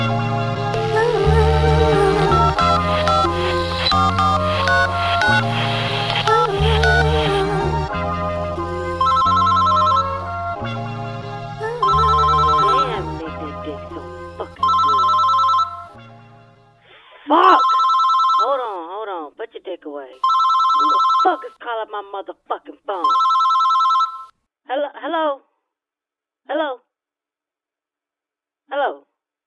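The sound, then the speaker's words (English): Dense music plays for about fifteen seconds, then cuts out, leaving a telephone ringing on its own in six or so clear, evenly spaced bursts that go unanswered. “Motherfuckers ain't wanna pick up the motherfucking phone.”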